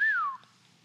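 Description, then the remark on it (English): A single loud catcall whistle, one clear tone that lifts briefly and then slides downward in pitch over about a third of a second, followed by near silence. “If he could, I catcall you.”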